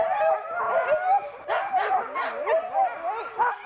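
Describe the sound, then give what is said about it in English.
A crowd of sled dogs at a kennel barks, yips and howls all at once, a loud, excited chorus of overlapping voices that rises and falls without letting up, with no one speaking. “They harness the dogs and hook them up and drive a team.”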